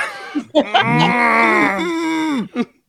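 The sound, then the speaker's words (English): A person imitates the long, drawn-out low of longhorn cattle: one loud, sustained moaning call lasting about two seconds, dropping in pitch at the end, with short grunts before and after. “Longhorn noises.”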